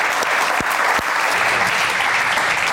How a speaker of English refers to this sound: Big round of applause.